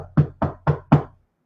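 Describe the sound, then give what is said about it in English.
Four firm knocks on a wooden door, evenly spaced in quick succession, fairly loud, with a dull low thud to each rap and silence afterward. “You go answer that door.”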